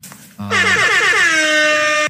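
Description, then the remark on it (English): A game show buzzer, used by a host to buzz a speaker off, blares once: a loud, brassy, horn-like tone held for about a second and a half, pitch sagging slightly. A brief low hum comes just before it. No one speaks. “I'm only buzzing you because I want to get two questions in.”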